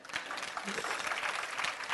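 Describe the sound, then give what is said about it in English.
An audience claps hands together in a dense, sustained burst of applause, steady and fairly loud throughout, with many overlapping claps blending into a continuous patter. “Go on, clap your hands.”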